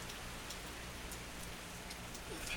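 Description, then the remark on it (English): Steady rain patters on an awning with a hole in it overhead, a soft continuous hiss broken by scattered sharper drips. It is fairly quiet, with no voices. “And the rain stopped.”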